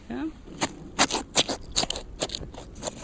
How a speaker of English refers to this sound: Opening up the rib cage now, that's what you can hear. Yep. Now it's cutting right down.